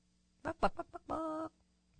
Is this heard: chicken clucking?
yes